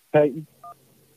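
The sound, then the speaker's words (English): A short burst of voice, then a single crisp telephone keypad beep, a brief dual-tone dialing sound as a caller is put through on the phone lines, followed by quiet low background hum. “Anyways, let's jump to the phone lines here.”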